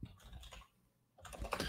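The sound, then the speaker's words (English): Rapid clatter of typing on a battery-powered computer keyboard, a quick burst of keystrokes, a brief pause, then another flurry of clicks, fairly loud with no voices. “I think I need to change the batteries on this keyboard”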